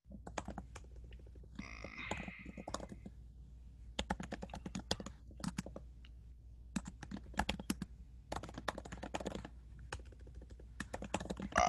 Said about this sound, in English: You're typing a lot. Oh, because one popped in my head too.